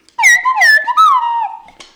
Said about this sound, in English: Is this slide whistle? Yeah. No. It's called slide whistle solo.